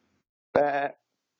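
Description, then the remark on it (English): A single short goat bleat, a clear, quavering cry lasting under half a second, heard alone against silence. “And then we have another special guest, Andy, the GOAT.”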